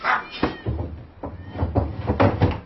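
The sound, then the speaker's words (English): Cats yowl and caterwaul in drawn-out, wavering cries, with sharp thuds and rustles breaking in between, fairly loud. “I can't stand their yowling.”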